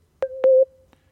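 A single steady mid-pitched electronic beep on a phone line lasts just over half a second, with sharp clicks at its start and a fading tail, then a faint tick. No one speaks.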